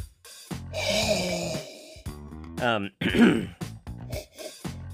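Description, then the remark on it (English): A long, drawn-in sniff of a glass of wine, from a bottle opened some days earlier and kept in the fridge, lasting over a second, followed by short throaty murmurs and vocal noises of someone reacting, with no clear words. “And as always, we'll follow our proper tasting technique, beginning with the sniff.”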